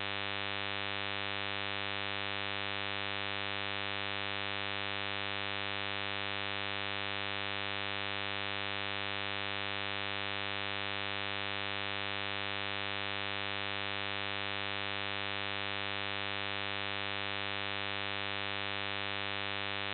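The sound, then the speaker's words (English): A steady electrical hum on a phone line, with buzzy harmonics and a faint layer of static, droning without change for twenty seconds and no voices. “We got a lot of static.”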